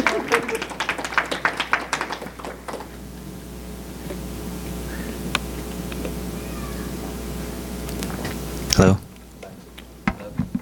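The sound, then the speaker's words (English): A short burst of scattered clapping from a small crowd fades out after about three seconds, leaving a steady room hum and a single loud thump near the end. “And so you can clap for them if you like.”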